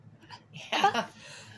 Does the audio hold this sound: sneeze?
yes